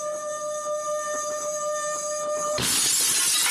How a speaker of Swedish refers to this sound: Och så sätter jag glasen nära varandra. Och sen gnider jag på det andra glaset.